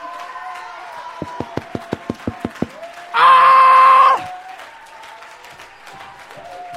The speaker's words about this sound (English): You know why we clap? Psalm 47, verse 1. Oh, clap your hands, all you people. Shouting to God. Wait a minute. Some of you have not obeyed that scripture yet tonight. He didn't say clap your hands, some of you people. He said, oh, clap your hands all.